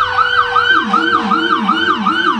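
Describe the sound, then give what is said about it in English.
A fire ladder truck's siren wails loudly in a parade, its pitch sweeping up and down in quick, steady cycles about twice a second, with a low vehicle rumble beneath and no voices. “And then we have the ladder truck.”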